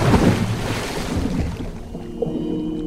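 ocean waves

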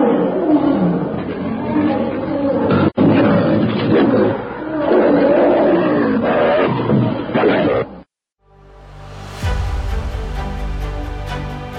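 lion roaring

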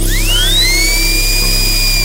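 dental drill whirring

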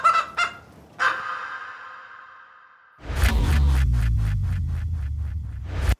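chickens clucking

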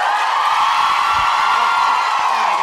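audience cheering

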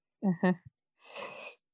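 human yawn

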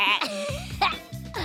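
mechanical pygmy goat bleating

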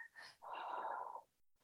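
deep breath in nose

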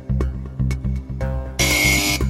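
game show buzzer

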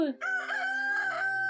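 rooster crowing cock-a-doodle-doo

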